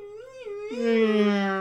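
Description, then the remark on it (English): A voice imitates a police siren with a sustained, wavering wail. Partway through, a second, lower wailing tone joins in, and the sound swells louder toward the end. “And it's two biplanes with like police cars on and little like sirens.”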